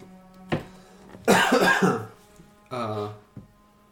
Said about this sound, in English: Normal cough? Yeah.